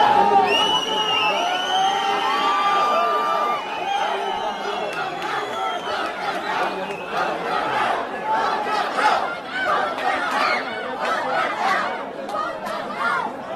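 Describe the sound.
Hundreds of Muslims shout and chant together at a school board meeting in America, the voices loud, breaking into rhythmic repeated bursts of yelling "vote them out" with cheering mixed in.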